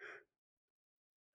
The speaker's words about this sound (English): yawns signal the end of the show, unless you got something to say on it.